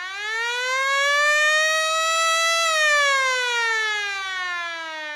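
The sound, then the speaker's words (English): An alarm siren wails on its own, its pitch climbing steadily for a few seconds and then sliding slowly back down in one loud, continuous, harmonically rich tone. “Sound the alarms.”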